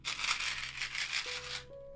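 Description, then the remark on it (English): Gum being chewed in a steady run of moist, crackly smacks, about eight quick chomps with no talking, ending as a pair of clear electronic tones step upward. “was the chewing gum pause.”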